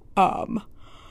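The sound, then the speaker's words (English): A single drawn-out vocal yawn, rising into a breathy open-mouthed sound before trailing off into quiet. “Excuse my yawn.”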